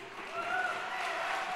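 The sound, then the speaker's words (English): An audience applauds Ryan Leslie and Hill Harper in a steady, dense wash of clapping, with faint cheering or voices mixed into the noise for the whole short moment. “Round of applause for Ryan Leslie and Hill Harper.”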